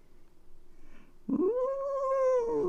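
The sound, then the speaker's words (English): A person imitates a cat with one drawn-out, wavering meow that starts abruptly after a quiet moment and holds loud for over a second, rising then gently falling in pitch. “So I know this is going to sound silly to some of you, but I'm going to make a cat noise. Meow. Meow.”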